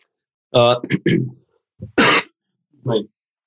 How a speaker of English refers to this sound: I've got this cough.